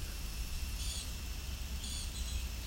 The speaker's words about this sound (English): Common yellow throat here.